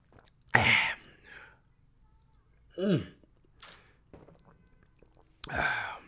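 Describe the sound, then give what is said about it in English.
Slurps and gulps of someone sipping water: four short, breathy mouth sounds separated by quiet pauses, with no talking. “Yes, quick sip of water, boss.”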